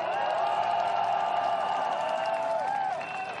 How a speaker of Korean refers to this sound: 오늘 12.9 이태원 참사 추모제가 먼저 열렸습니다. 뜨거운 격려와 지지의 박수를 부탁드리겠습니다.